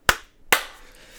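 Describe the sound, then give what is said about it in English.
Two sharp hand claps about half a second apart, made as a sync point for a recording, each a crisp, bright smack with a short ringing tail. The second is slightly longer in decay, and no one speaks. “When it hits time seven minutes, so in 15 seconds or so, clap. Okay. And then that'll be our sync point.”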